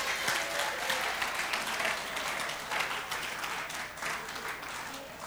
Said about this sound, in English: And give Jesus a clap.